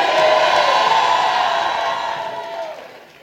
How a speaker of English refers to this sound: If you believe it, come on, give the Lord a shout and a clap. Give the Lord a shout. Give the Lord a shout.